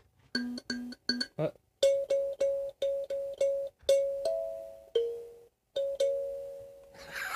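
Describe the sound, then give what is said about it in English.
A small, banged-up, out-of-tune tuned instrument plays Jingle Bells as a Christmas carol, a run of bright, bell-like notes with crisp attacks, mostly repeated pitches in a steady bouncing rhythm, fairly loud with no talking. “Well, I know the basic rhythm of Jingle Bells, so there you go.”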